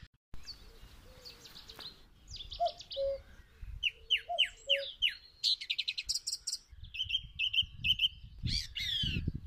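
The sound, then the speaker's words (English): A song thrush sings a varied run of bright, repeated phrases, clear, with short pauses between bursts and a soft background hum underneath; no one speaks. “I was just taking a picture of that song thrush.”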